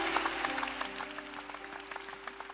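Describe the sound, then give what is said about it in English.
A crowd claps steadily, a dense patter of many hands at moderate loudness, with a faint steady hum running underneath throughout. “Are you clapping or you don't believe what has happened?”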